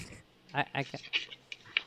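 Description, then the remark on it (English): A dog lying on a bed pants and shifts around, a few short breathy huffs mixed with soft rustling and scuffing, fairly quiet and uneven in rhythm. “There was a dog laying on the bed.”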